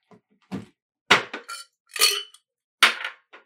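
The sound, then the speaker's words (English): Several sharp glassy clinks and knocks, irregularly spaced, as two glasses, one a shot glass from a cruise ship, are picked up and set down while materials for a drink are laid out, with bright ringing edges and no talking. “It's my shot glass from the cruise ship. Oh, hey, here we go. Now the party's starting. So I've got my 2 glasses.”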